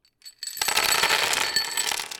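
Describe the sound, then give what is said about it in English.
A handful of dice dumped onto a table behind a Dungeon Master's screen during a tabletop game, a dense clatter with bright ringing clicks that last about a second and a half before settling. “Gerald dumped the dice behind his Dungeon Master's screen”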